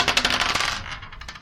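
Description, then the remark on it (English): Two dice are rolled for a stress roll, landing on a 3: they clatter and tumble across a hard surface in a quick run of bright, rattling clicks that thins out and settles within about a second and a half. “Roll me a 2 die stress roll, please, waking up in rigging.”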